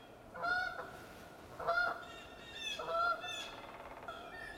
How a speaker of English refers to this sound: The birds are active this morning. It's 7:30 near Hart's location in New Hampshire. I just wanted to do a quick check-in. I was going through, I can hear some geese. Two geese.